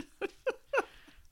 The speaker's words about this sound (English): Oh, hold on. The dog's barking.